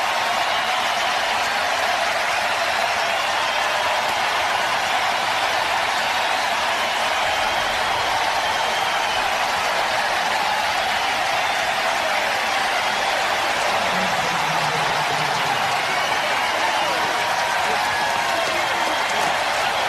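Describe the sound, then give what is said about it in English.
A baseball stadium crowd in St. Louis cheers and applauds Albert Pujols, now with the Los Angeles Angels, after he hits a 2-1 pitch for a home run to deep left. It is a loud, sustained roar that holds steady for about twenty seconds without a break, a dense wash of clapping and shouting. “That's a long crowd reaction, and a deserved one, too.”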